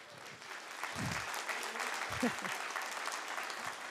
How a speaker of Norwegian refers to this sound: Nydelig lovsang. Må gi lovsangeren nå en god klapp.